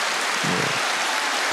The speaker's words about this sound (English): Let's go ahead and give my guy a round of applause.